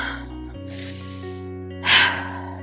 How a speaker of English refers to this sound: Everyone, take a deep breath, inhale. Exhale.